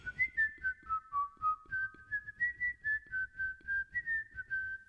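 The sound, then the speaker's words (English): A person whistles a song alone for listeners to guess, clear, with steady sustained notes shifting up and down in pitch, accompanied by a soft rhythmic low thumping beat underneath. “It's time for Guess That Song, Whistling Edition. I'll whistle a song, and you guess what it is.”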